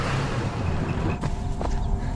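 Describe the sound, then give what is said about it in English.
A pickup truck engine rumbles steadily in an ad, a low continuous drone with a couple of brief knocks partway through and no voices. “Getting harassed by this truck.”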